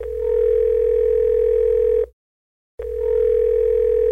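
A telephone tone from an outgoing call: a steady, fairly loud electronic hum that sounds for about two seconds, stops for a short gap, then starts again, with no one speaking.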